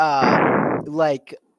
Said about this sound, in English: you're kissing, breathing on your mic. Breathing on your mic.